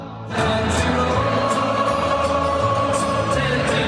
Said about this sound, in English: The NFL makes a practice of playing a couple of games every year in various European cities, and this weekend, the Tampa Bay Bucs took on the Seattle Seahawks in Munich, and the crowd was definitely hyped, singing an American classic.